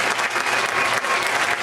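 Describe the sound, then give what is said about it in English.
Loud, dense applause from a crowd, many hands clapping rapidly and steadily without pause, a vigorous, enthusiastic ovation filling the whole moment. “Like, this is not a golf clap.”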